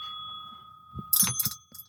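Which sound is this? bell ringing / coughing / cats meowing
bell ringing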